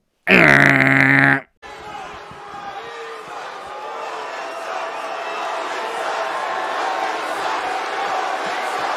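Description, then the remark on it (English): A loud, brassy tonal blast opens, cuts to a brief silence, then a large wrestling arena crowd cheers in a steady, dense roar that swells slightly and holds to the end, during a wrestling promo as Roman Reigns is introduced. “They're a lively bunch tonight, pal.”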